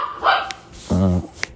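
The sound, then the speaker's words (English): A dog named Louis barks twice in a studio: a short, higher yelp first, then a longer, deeper, harmonic bark a moment later. Both are fairly loud over a quiet background. “We gotta get him where he wants to be, or he'll just bark.”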